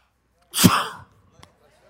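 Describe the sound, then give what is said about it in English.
A single sharp sneeze bursts out, loud and brief, followed by a faint small click and then near silence. “That's a non-COVID sneeze.”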